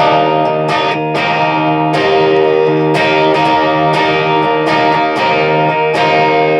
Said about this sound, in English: Which is play the riff, man. Let's hear it. It's played loud with distortion.